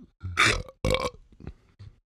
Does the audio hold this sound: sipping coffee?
no